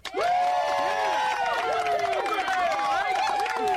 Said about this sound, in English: Okay. Applause. I found that one.